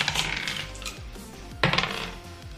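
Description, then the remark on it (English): Dice are rolled on a table, clattering and rattling across the tabletop, with a sharp louder knock partway through, tumbling to a stop. No voices. “I should pull my dice out.”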